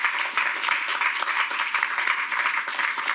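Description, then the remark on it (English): An audience applauds the speakers, veterans of capital markets, clapping steadily for several seconds, a dense, even wash of many hands with no voices standing out, holding at a constant moderate loudness throughout. “But anyway, how about a round of applause for our speakers?”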